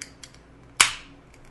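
A single sharp crack of a beer can being opened, followed by a short bright hiss of fizz that fades within a fraction of a second. No voices are heard.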